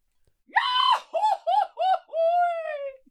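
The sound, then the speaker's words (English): A voice imitates the cartoon character Goofy's yell from falling off a cliff: a held high cry, three quick yodel-like hiccups, then a long wailing note that slides slowly downward in pitch. “I can do his yell, like when he falls off the cliff.”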